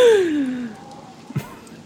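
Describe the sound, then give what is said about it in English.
A person makes a sharp, voiced gasp of shock that slides downward in pitch and fades over under a second, then a brief soft breathy catch follows. No words are spoken. “To create, I'm gonna let out being. a gasp of shock.”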